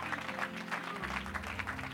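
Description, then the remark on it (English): A crowd claps steadily and continuously, giving a Bendale welcome to a guest coming to the pulpit in the morning, a dense patter of many hands, with a low sustained musical tone humming underneath. “God, let's give him a good Bendale welcome this pulpit this morning.”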